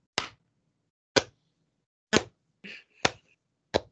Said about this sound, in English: That's me starting a slow clap for you